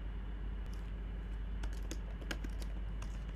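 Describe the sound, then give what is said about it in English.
Quiet clicking of keys on a computer keyboard as someone types a name to search on Instagram, a handful of irregular taps clustered in the second half over a steady low background hum. “I'm typing in Funky Dineva.”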